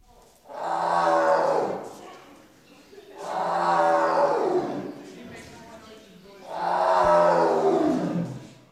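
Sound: tiger roaring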